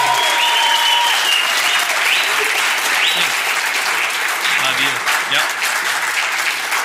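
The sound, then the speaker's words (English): A large crowd breaks into loud, sustained applause, dense clapping filling the whole stretch at steady volume, with scattered cheers and whoops rising over it. The applause is for a man being called up to speak. “So because we're people of grace and grace is getting what you don't deserve, before he says a word, will you just erupt with applause and love for our brother?”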